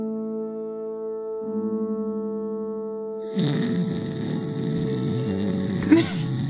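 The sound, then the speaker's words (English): A steady held tone plays, then a loud, rough, rumbling animal snore bursts in and drags on raggedly for several seconds, heavy, with a brief sharper catch near the end. “Vasa, huge snore from Tompkins.”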